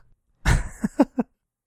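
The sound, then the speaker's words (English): A single harsh cough bursts out, followed by three quick, smaller coughing sounds in a short rhythmic series, with no talking. “But first, I need to cough.”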